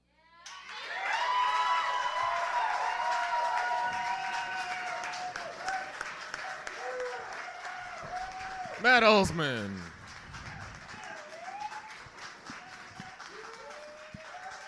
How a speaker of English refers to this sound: And the crowd goes wild.